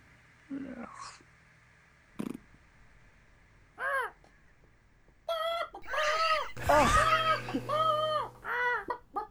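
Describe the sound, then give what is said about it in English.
Harsh, squawking ouzel bird calls ring out, a cawing that starts as scattered single cries and builds into a busy, overlapping flurry of loud calls. “Oh, bloody hell, it's an ouzel bird. Run, the ouzel birds are after us.”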